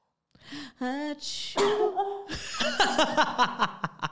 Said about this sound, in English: That was a quiet sneeze for a Filipino.